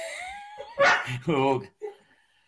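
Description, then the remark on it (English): A dog whimpers with a high, drawn-out whine, then lets out a couple of short, sharp barks, ending in a brief yelp. “Actually, this podcast is going to shit now because of your dog.”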